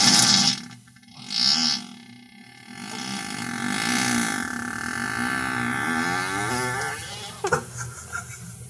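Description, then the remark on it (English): A loud, amplified recorded fart from 2011, its audio boosted in the second half, with a long, whiny, wavering drone that stretches over several seconds, preceded by short bursts and ending in a few sharp pops, with no talking. “That was a fart I did in 2011.”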